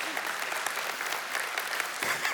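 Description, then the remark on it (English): An audience claps steadily, a dense wash of many hands with no clear rhythm, holding at an even moderate level throughout. “Which you're clapping, and I just said it's going to get worse.”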